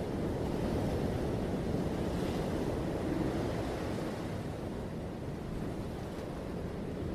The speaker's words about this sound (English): I actually have a sound machine. I'm going to turn on some beach waves in the background for us.